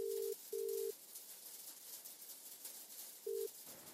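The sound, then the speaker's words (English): A call tone from a mobile phone with a cracked screen after dialing a number, short steady electronic beeps, two close together and then one more after a pause, over a constant hiss of rain in a cornfield. No one speaks. “I found the number and hit dial.”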